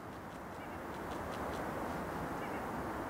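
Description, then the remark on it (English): Faint, scattered bird calls, a few brief chirps rising over a steady, rushing wash of outdoor background noise that stays constant throughout. “The cacophony of bird.”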